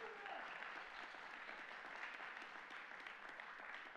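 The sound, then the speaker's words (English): An audience claps steadily for several seconds, giving the Lord a hand clap, a dense, continuous wash of many hands applauding together, with faint voices blending into the sound. “And that's a great place to give the Lord a hand clap and say, amen, thank you, God.”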